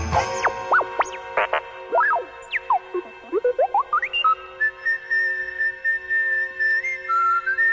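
A whistled solo rendition of Jingle Bells, starting with quick swooping, sliding notes and settling into a long, steady held tone, with no talking.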